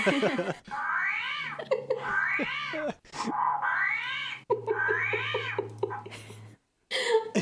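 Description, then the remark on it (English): An armadillo calls in a run of wavering, high-pitched squeals and chirps, loud and harmonic, over a steady low hum, in several bursts broken by short pauses. “Next one is the armadillo.”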